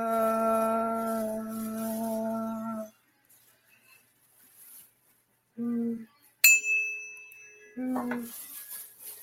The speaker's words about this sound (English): Let me ring my bell again.